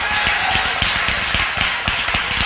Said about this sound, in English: Hallelujah. That'll probably be the loudest applause I get all day, but it's awesome. Because I know all of you in here are agreeing with me.